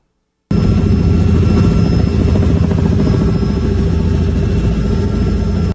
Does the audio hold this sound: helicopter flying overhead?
yes